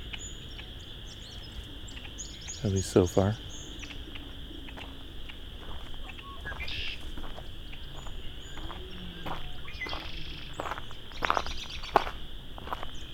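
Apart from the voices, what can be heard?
blackbirds calling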